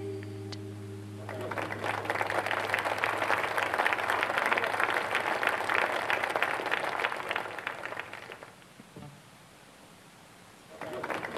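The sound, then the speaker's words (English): A sustained burst of dense, loud applause follows the last held low note of music, fades after several seconds, then a second round of clapping starts up at the very end. “Double applause.”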